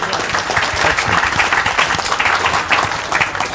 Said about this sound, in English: Ladies and gentlemen, nice round of applause then, please